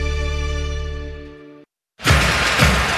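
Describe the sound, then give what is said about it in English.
A steady humming tone stops abruptly, and after a short pause a loud burst of shattering windshield glass erupts, its harsh crackle continuing to the end. “This Buckeye season, don't let a broken windshield ruin your game plan.”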